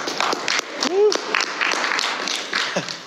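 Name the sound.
weak clapping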